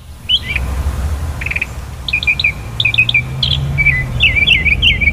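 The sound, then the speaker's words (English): A Carolina wren sings bright, rolling phrases repeated in quick succession, clear and prominent over a steady low outdoor rumble at the Masters golf tournament. “We found out this is the California wren.”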